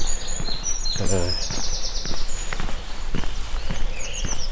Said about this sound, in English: There's a willow warbler up here. Let's see if we find that willow warbler. There we go. Sort of dripping notes.